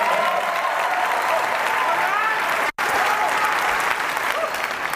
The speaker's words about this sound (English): Let's clap it up.